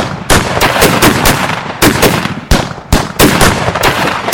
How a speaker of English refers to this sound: Shots exploded from rifles, shotguns, and pistols.